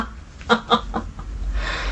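A rooster crows in a quick series of three or four short, bright bursts, moderately loud, followed by a low background hum and faint hiss.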